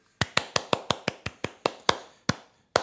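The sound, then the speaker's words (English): A series of about a dozen sharp hand claps in a quick, steady rhythm. The beat slows toward the end, then a gap before one final clap. No voices. “Hand clap.”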